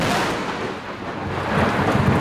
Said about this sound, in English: A byproduct of a hurricane that just hit the state of Oaxaca, this lightning storm was fierce. We had several bolts of lightning strike within a few meters of the cabanas. One hit the power lines directly.